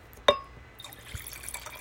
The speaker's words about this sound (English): One more. Oh, that was weak. That was so weak, but pour me wine.